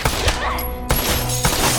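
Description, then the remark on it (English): Several loud gunshots fired into a kitchen ring out in an uneven series, each a sharp, cracking blast followed by a brief rumbling tail, with no voices. “Rico fires into the kitchen, tagging Sophie in her right thigh.”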